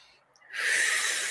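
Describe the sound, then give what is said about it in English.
A single forceful breath pushed out through the mouth during a breathing exercise, starting quietly and swelling into a loud, airy rush that holds steady to the end. Clear, with no talking. “So you do this drop in, you do the shift in breathing.”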